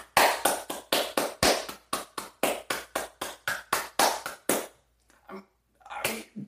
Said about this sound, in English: I mean, seriously, can we genuinely get a round of applause for Germany? I mean, and I mean that. Can we legitimately do that right now?